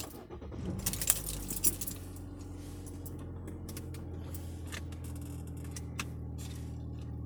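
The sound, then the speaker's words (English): Car keys jangle in a quick burst of metallic clinks during the first couple of seconds as someone searches for them to move a car, then a steady low engine-like rumble continues with only occasional faint jingles. “and I just completely forgot about everything because I was just looking for my car keys.”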